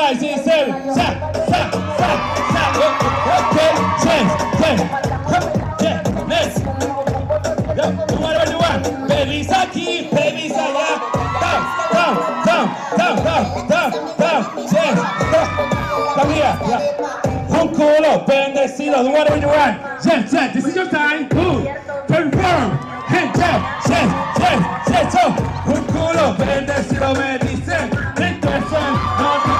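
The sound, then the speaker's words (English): A dense, roaring crowd cheers and yells continuously, loud and sustained for the whole stretch, with whoops and shouted voices rising out of the constant wall of noise. “And the crowd goes wild while we all go insane.”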